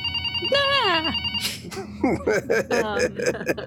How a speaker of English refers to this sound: And suddenly you hear the phone ring behind you.